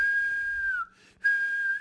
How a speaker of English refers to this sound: But yeah, he falls too far behind and he yells for the guards, and then there are several shrill whistles.